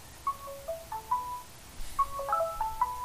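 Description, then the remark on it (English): A mobile phone ringtone for an incoming call plays a short melody of clear electronic notes, then repeats it after a brief pause. It is moderately quiet against a faint background hum, with no one speaking. “Now, this is weird, because that's coming in on my phone.”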